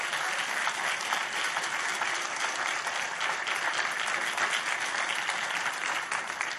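Sustained applause from a large audience, offered to the Lord during a sermon, many hands clapping densely and steadily at an even loudness for several seconds with no one speaking.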